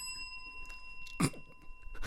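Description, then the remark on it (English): A bell rings with a bright, sustained metallic tone that lingers throughout, its shimmering overtones steady while a brief clatter and a few soft knocks sound partway through. “I've got this whole bell thing to end it.”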